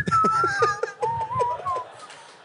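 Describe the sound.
A person whistles a short, wavering tune, the thin melody sliding between a few notes over soft low thumps and murmuring in the background.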